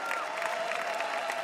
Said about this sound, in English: One more round of applause for our VIPs.